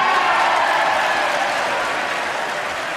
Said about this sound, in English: And the whole, you know, all the congregation, all the lawmakers stood up and applauded.